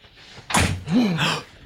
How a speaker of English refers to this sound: Oh, God, someone's at the door.